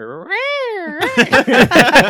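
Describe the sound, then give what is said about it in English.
A single long, wavering yowl from a cat in heat rises and falls in pitch for about a second, loud, then gives way to busy, overlapping voices. “That I always thought the cats were fighting outside of my house.”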